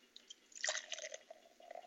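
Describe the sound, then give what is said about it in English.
Oktoberfest Märzen beer from a 32-ounce twist-top bottle is poured into a glass, a brief gurgling splash that swells in the middle, then settles into a soft, fizzy crackle of foam forming an off-white head. Quiet, with no talking. “And the pour.”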